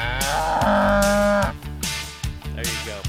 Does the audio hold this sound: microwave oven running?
no